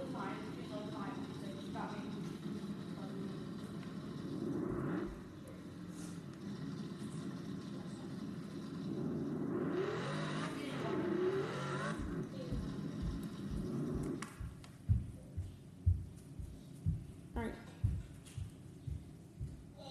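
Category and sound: vehicle, race car engine roaring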